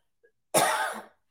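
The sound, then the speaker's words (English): A single harsh, breathy cough bursts out, preceded by a tiny faint click, then trails off into quiet after about half a second. “Ooh, that's the downside of being live. If you start coughing.”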